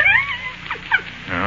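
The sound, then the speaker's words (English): A young male puppy, thought to be suffering from exposure, whimpers in a few short, high, wavering whines, one drawn out at the start and two brief ones after, over a soft steady background hum, with no talking. “He's hardly more than a pup.”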